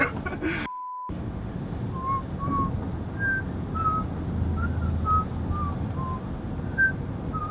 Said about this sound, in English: What's going on with this whistle? His bottom lip comes way out here.